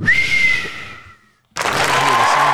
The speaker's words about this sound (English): Oh, is that a clap? It's clapping, yeah.